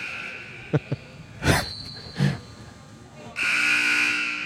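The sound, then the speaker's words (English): A referee's whistle, blown by referee Judge Clarence Thomas during a game, gives a long, loud, shrill blast that holds steady for about a second, preceded by a couple of sharp clicks and two breathy puffs. “And we have another whistle blow from referee Judge Clarence Thomas.”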